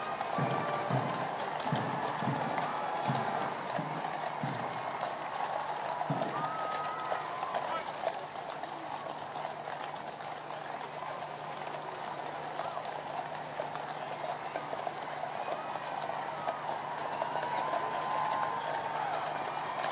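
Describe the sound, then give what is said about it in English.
Horses' hooves clip-clop in a steady rhythm as the Diamond Jubilee State Coach carries King Charles III in his coronation procession to Westminster Abbey, most distinct in the first few seconds, over a constant wash of crowd noise and murmuring voices. “King Charles III travels to Westminster Abbey in Diamond Jubilee Sta”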